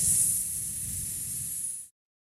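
A steady, high-pitched hiss of air escaping from the flat back tire of a car, heard on a television show, loud at first and easing slightly, continuing unbroken for nearly two seconds before cutting off abruptly. No voices.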